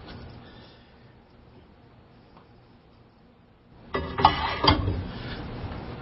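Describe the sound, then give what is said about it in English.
After a few seconds of quiet hum, the door of a talking microwave oven opens with a sharp latch click and a second clunk, then a soft rattling rustle. “I have one of Dale Campbell's talking microwave ovens. So, we'll open the door.”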